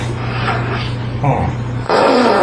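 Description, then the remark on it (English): A fart rasps out into a tube in a couple of bursts, a short buzzy blat followed by a louder, breathy blast, all over a steady low hum with no talking. “It's farting right into that tube there.”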